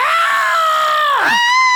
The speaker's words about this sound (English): Bronte gave a short shriek as the blood spray painted her bosom and face, streaking her hair pink.